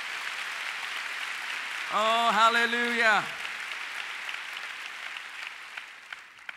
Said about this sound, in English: Oh, come on, let's give the Father a big clap. Hallelujah.